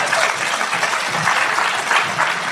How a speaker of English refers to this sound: And I can tell you that we've been married 20 years. And I can also you can give a clap for that.